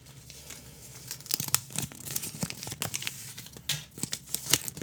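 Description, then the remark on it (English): Crisp crinkling and tearing of thin paper as the paper from inside a Kinder Egg is pulled apart and unwrapped, a series of sharp rustling bursts that come irregularly, with no voices. “Okay, so there's like... necklace inside, but there's also paper. Let's see your paper.”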